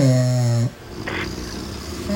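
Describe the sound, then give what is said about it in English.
Loud snoring from a sleeping person: a buzzing, rasping snore, a brief quiet pause with a faint hiss, then the next snore beginning. “You know, couples that snore together.”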